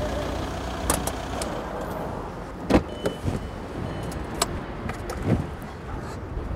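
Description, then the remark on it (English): A car pulls up to a gas pump at a card lock fuel station in Duncan, British Columbia, on Vancouver Island, its engine a steady low rumble, with a few sharp clicks and soft thumps scattered through. No voices. “A car pulls up to a gas pump at the Cowichan Petroleum Card Lock in Duncan, BC on Vancouver Island.”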